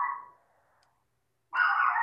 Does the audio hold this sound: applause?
no